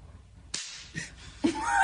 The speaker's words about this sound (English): And she slaps her boob, and the dog looks up